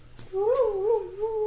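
A loud, close stomach growl stretches out for over a second, its pitch wavering and whining almost like a yowling cat, with no talking over it.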